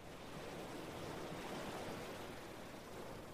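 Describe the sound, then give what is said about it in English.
A soft, continuous wash of ocean surf at the seashore, steady and hissy with no distinct breaking crests, heard alone without any voices. “Did you hear the ocean?”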